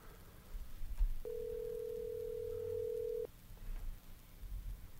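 A single ringback tone of an outgoing phone call: one steady, mid-pitched electronic burr lasting about two seconds, preceded and followed by quiet line hiss and low rumble.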